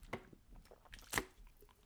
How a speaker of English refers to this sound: Excuse me while I drink water.